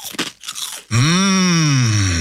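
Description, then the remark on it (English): A few crisp crunching bites into Penny's Crispy Pork Crackling, a slow-cooked Australian snack, quickly followed by a long, loud, satisfied humming "mmm" from a voice. “Penny's Crispy Pork Crackling is slow cooked for that big crunch and taste.”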